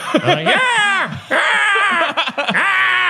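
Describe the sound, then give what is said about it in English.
A person imitates an eagle's screech: loud, shrill vocal cries that swoop up and down in pitch, repeated in three long bursts with brief breaks between, and no speech. “That's a great eagle. That's perfect.”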